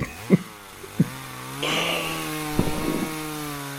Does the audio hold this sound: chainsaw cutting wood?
yes